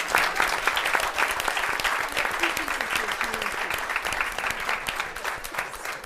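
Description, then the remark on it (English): Steady, sustained applause from an audience for the winners, a dense wash of many hands clapping at an even loudness for about six seconds, with no words spoken over it. “And a final round of applause for our winners.”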